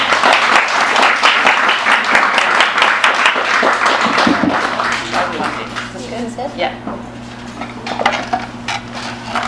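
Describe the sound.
An audience bursts into steady, dense applause, the clapping loud for several seconds before thinning and tapering off, leaving a low hum and some scattered voices.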